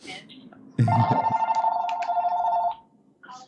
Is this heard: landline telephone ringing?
yes